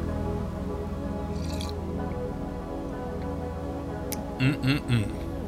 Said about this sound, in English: I'm gonna get a sip of my coffee, so hang on.